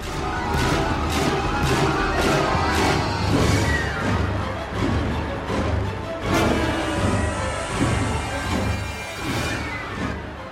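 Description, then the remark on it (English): Loud, dense orchestral horror score with tense sustained tones and repeated sharp percussive stabs, played continuously for about ten seconds with no talking. “I'll play the comparison now.”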